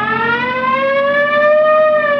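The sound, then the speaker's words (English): A police car siren wails loudly and continuously, its tone slowly rising in pitch over a couple of seconds, with no voices, as officers move to pull over a driver on Yucca who turned left from the wrong lane. “You want to hit the siren?”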